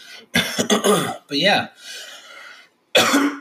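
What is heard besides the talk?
coughing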